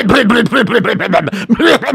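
Someone clears their throat in a quick, steady run of voiced, guttural rasps, each rising and falling in pitch, loud and continuous for about two seconds with no talking.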